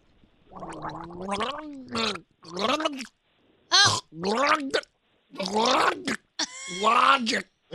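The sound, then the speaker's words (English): Someone gargles water while forcing out the wavering melody of a music artist's song, the bubbling voice rising and falling in several short phrases separated by brief pauses, fairly loud. “We're just about to gargle that artist.”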